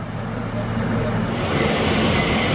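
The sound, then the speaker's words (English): A Manhattan-bound F subway train, running via the E line between Queens Plaza and Court Square, 23rd Street, rumbles steadily along the tracks, its low roar building as a bright metallic wheel squeal rises partway through and holds over the continuous noise. “This is a Manhattan-bound F train via the E line.”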